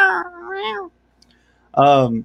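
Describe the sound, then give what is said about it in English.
A human voice imitates the cat-like sound of Uncle Frank from Hellraiser: a drawn-out, wavering mew, then a short pause and a louder, strained second meow, clear with no other talking. “Why did he sound like a cat though?”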